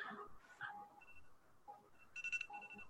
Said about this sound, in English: It's like half quiet, half not. Yeah, that's how the alarm goes.